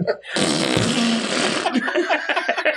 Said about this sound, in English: You know what I love? Cake farts.